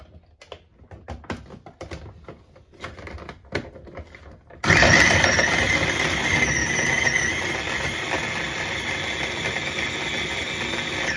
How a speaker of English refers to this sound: So my one onion, I needed to chop into 3 pieces, and it fits a little bit more in this chopper, so I'm going to take a little bit more from the other onion, and I'm going to pulse until I get it really fine.